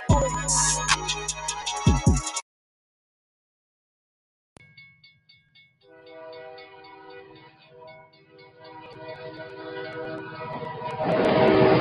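After a brief busy burst and a pause, a train rumbles along steadily while its horn blows a long sustained blast, the clatter swelling louder toward the end.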